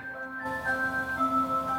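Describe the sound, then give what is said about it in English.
A musical clock chimes eight o'clock, playing Christmas tunes with sustained, ringing chime tones over a steady mechanical ticking, moderately loud, with no voices present. “Oh, there's your 8 o'clock, man.”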